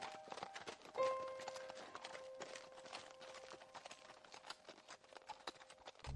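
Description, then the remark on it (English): A ridden horse gallops away as fast as it can in a fast, steady rhythm of clattering hoofbeats that continue for several seconds, with a faint sustained tone humming underneath. “Then I turned and clicked my heels into my horse's side and galloped as fast as I could in the opposite direction.”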